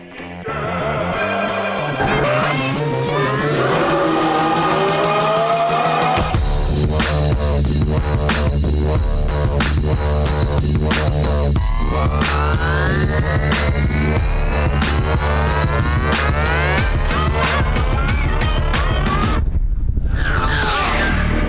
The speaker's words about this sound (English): because you're basically going to hear the song we just heard with a bunch of tires screeching yeah. over top of it. And then at the end, you'll hear the Sonic branding.